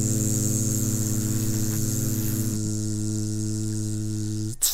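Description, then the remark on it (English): A steady electrical buzz from an LED light, with strong low harmonic tones and a faint high whine, droning continuously and fairly loud before a sharp click cuts it off at the end. “And it has that LED kind of vibe, like the you humming. You can hear it.”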